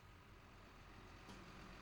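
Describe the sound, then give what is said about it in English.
A garbage truck rumbles steadily in the distance, a low continuous drone broken by one sharp clank of a bin partway through. No one speaks. “In the distance, a large vehicle rumbled and clanked, garbage truck engaging in intercourse with its bins.”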